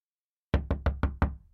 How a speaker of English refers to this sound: He knocked on the door.